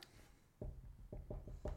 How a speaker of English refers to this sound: I simply knock on wood. I'm simply knocking on wood because God, please let every fight happen.